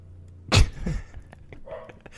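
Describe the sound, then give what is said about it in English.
A dog that has been let outside gives two short, sharp barks in quick succession in the background, the first louder than the second, followed by quiet with no one talking. “There's our dog.”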